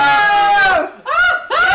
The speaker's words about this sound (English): Now, who wants to go apple picking? The crowd cheered.